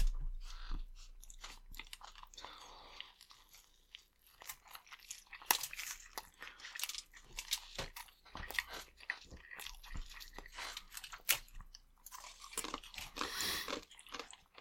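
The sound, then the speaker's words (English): Wet, steady chewing with soft crunches and smacking bites, irregular and fairly quiet, someone eating a beef burrito with occasional crinkles of a wrapper and no talking. “But yeah, let's... dig in.”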